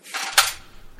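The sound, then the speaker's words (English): Someone rummages in a kitchen drawer while getting some yogurt: a brief rustle and rattle of objects with one sharp metallic clink in the middle, then fading clatter. No one speaks. “You getting some washers out of the drawer there?”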